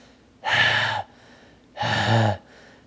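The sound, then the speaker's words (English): A voice imitates a man breathing excessively heavily into a microphone: two loud, harsh, rasping breaths, each about half a second long, with a short quiet pause between them. “And he's breathing in excessively heavy in the mic like this.”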